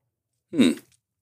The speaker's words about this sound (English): so you like keep it in your mouth a little longer. Yeah, just coating your tongue, right? Or chewing your whiskey.